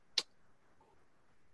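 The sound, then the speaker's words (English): A single crisp computer mouse click on a link, brief, followed by near silence with only a faint hum and no talking. “Sorry, I was clicking a link there.”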